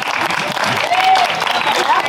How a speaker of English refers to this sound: Yeah, it also sounds like you, yeah, we can applaud. That was great.